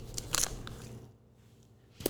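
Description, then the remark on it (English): Crisp, crackly paper rustling in a few short bursts, loudest near the start, then a quiet lull before one more brief rustle at the end. “Can hear all my papers whistling.”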